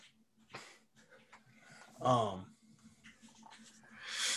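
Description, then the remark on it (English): A dog lets out a short, whiny vocal burst midway through, with faint snuffling and rustling around it and a steady low hum underneath. “It seems my dogs here bugging me, but I love you, honey.”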